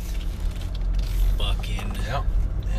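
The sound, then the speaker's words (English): Steady low rumble of a car rolling slowly through a Walmart parking lot, heard from inside the cabin, a constant engine and road drone with a brief murmured voice partway through. “Sorry, pulling through the Walmart parking lot”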